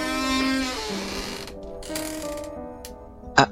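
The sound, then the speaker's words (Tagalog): A bedroom door suddenly swings open with a drawn-out, ratcheting creak of the hinge and latch, ending in a sharp knock near the end. It's fairly loud, and nobody speaks. “Naalimpungatan na lang ako nang biglang bumukas ang pinto.”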